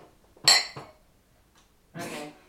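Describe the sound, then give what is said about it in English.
Glasses clink together in a toast, a sharp bright ring followed by a second, longer and softer clinking, with no talking. “Sorry, you need us to cheers again. Please.”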